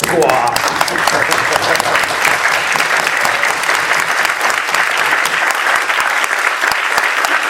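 A crowd claps steadily in a loud, dense round of applause that holds at a constant level for several seconds, a wash of many overlapping hand claps with no voices standing out.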